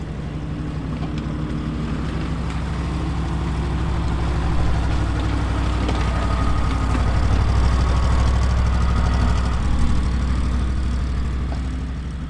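The engine of an amphibious wheeled boat (a LARC) used for ship-to-shore resupply at Macquarie Island drones steadily, with a deep, constant low rumble and a faint rhythmic throb, steady throughout with some wind buffeting the microphone.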